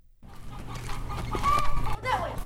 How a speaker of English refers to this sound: Chicken, you are surrounded! It's recess at Monzo Elementary School in Barrio Hollywood. All of the chickens got out of the chicken tractor. Kids have to catch the chickens to put them back in the coop.